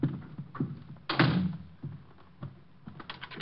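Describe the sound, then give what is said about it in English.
A door swings shut with a solid thump, followed by several small mechanical clicks and rattles as it is latched and locked, moderately loud. “I'm locking the door.”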